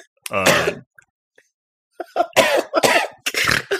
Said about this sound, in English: Just comfort him, get him to stop coughing, get his cough to ease.